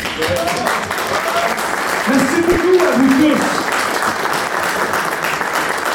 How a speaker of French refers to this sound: Fait que je tiens à vous féliciter, puis moi-même à vous applaudir.